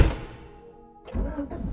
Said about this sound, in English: So I get into the driver's seat and start the car.